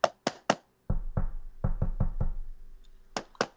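Knocking on a door: three sharp raps, a pause, then a heavier run of several thudding knocks, and two final raps, loud with no talking.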